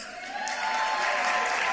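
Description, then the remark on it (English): A roomful of people applauds at a Virginia Democrats party dinner, the dense clapping swelling slightly after the first moment and then holding steady, with no voices standing out above it. “What about another round of applause?”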